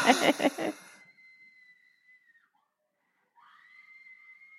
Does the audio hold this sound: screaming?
yes